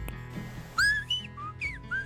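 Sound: whistled language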